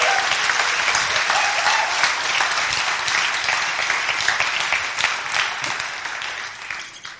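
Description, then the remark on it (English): A crowd claps steadily and energetically for several seconds to welcome guests, a dense wash of hand claps that holds strong before tapering off slightly at the end. “So please welcome them, give them a massive clap.”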